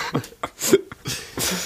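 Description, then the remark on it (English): A string of short, rough coughing bursts, several sharp hacks followed by a couple of longer, breathier coughs, with no talking. “You can't delete your coughs.”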